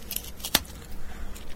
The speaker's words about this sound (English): The biscuit's got a good crunch to it by the sound.